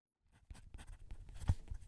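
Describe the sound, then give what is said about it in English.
A Musgrave Tennessee Red Cedar pencil scratching across paper in short strokes, a dry rasping scribble with light taps, continuous for a couple of seconds with no voices. “By the way, I've switched to a Musgrave, Tennessee Red Cedar pencil.”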